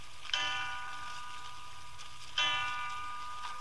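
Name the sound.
clock striking three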